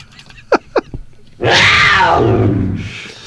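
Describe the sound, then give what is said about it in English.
A loud, harsh cougar growl swells and rasps for about a second and a half, following two brief, high chirping calls, with no talking. “So now we have a dead donkey, a dolphin, a coyote, and a cougar in here.”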